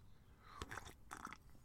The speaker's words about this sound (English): Slurp, and my tea is cold already.